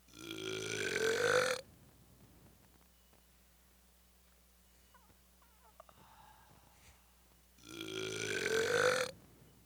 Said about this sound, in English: That was you. I heard the afterbirth of that burp. Afterbirth? I'm good at God damn, it sounded like a fucking shotgun. Oh, that was nasty.